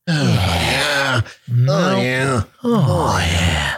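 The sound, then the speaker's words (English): Three loud, drawn-out bursts of exaggerated grunting and heavy, strained breathing, each separated by a brief pause, with no speech. “I'm like almost out of breath over here for just breathing weird.”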